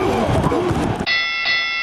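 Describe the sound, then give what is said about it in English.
A loud, noisy burst from a Carolina Panthers soundboard button cuts off abruptly, and a bright, sustained bell tone from the soundboard's hit bell rings out in its place, struck again a moment later. It is clear, with no talking over it. “I meant to push the hit bell, and my pinky swiped on the Panthers, so I got 2 going.”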